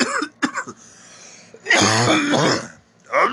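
A person coughs after taking a hit of weed: a couple of short hacking bursts, then a longer, rough, throaty cough that rattles out, followed by another forceful cough starting at the end.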